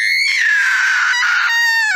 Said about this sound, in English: here was just such a tree, and in it an oak maiden. She uttered a terrible scream when she caught sight of me so near to her.